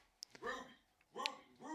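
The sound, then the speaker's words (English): A dog whines and barks in three short, rising-and-falling bursts with brief pauses between, moderately loud, with a couple of sharp clicks near the start. “Hang on, I gotta let this damn dog out.”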